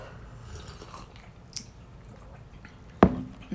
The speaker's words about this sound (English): So let's go ahead and take our first sip. All right. I'm ready.